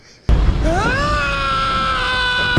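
A man's loud scream sound effect bursts in abruptly, rising sharply in pitch and then holding as one long, strained, sustained yell over a rough, noisy background.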